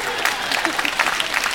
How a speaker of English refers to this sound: Ah, yeah. There's a little bit of applause there.